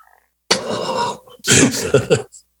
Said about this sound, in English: I had to throw the fart noise into the air.